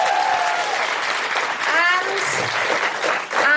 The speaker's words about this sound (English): Big round of applause for Francesca Moody.